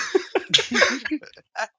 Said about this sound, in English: I even said I was coughing